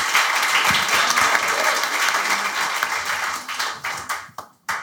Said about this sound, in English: Can we have a huge round of applause for this great panel?